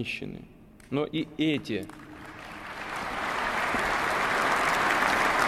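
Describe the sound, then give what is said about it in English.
A brief burst of voice gives way to applause from an audience that includes a number of Russian religious leaders, swelling into a steady, dense wash of clapping that holds loud through the end. “You see people applauding, a number of Russian religious leaders out there.”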